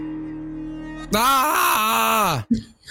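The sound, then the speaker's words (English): A person lets out one loud, drawn-out scream lasting over a second, strained and raw, wavering before sliding down in pitch and cutting off abruptly, followed by a short breathy gasp. “I'm starting with a scream, right?”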